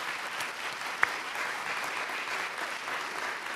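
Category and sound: crowd, round of applause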